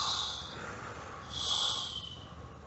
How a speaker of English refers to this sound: And now taking one more conscious deep breath in through your nostrils. Holding it. And then blowing out slowly.